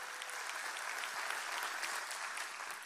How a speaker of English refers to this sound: And our family at SCI Chester in partnership with God Behind Bars. Let's show them some love, family. Come on, clap for them.